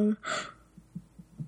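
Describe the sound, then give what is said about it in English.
A short, breathy yawn: a soft airy rush of breath that swells and fades in under half a second, followed by a few faint low murmurs and a brief voiced sound at the end. “Oh, I'm sorry, I'm yawning.”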